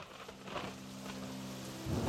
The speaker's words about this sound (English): One night, a terrible storm ravaged the earth.